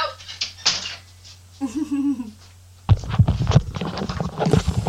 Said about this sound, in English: My dog's just come in and opened the door. I'm just going to close the door quickly.